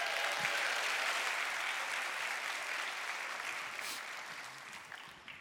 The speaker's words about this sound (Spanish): Es más, date un aplauso a ti mismo.